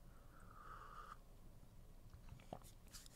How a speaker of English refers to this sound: But anyways, sip of coffee time.